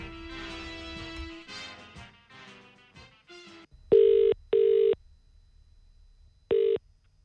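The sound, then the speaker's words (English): A quick run of shifting electronic keypad tones as a number is dialed for a phone call made on the radio, then loud, steady ringback tones: two close buzzing rings, a pause, and a third ring. “So well, can you call them and work out how I know Kaka?”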